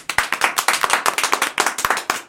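A quick round of applause: a few people clapping in a fast, uneven patter of sharp, bright hand claps that stays fairly loud for a couple of seconds, with no voices over it.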